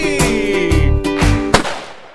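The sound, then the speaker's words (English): Gunshot sound effects: about five sharp, booming bangs fired at uneven intervals over a steady humming tone, the last blast the loudest and trailing off into a fading echo. “Gun was unnecessary in hindsight.”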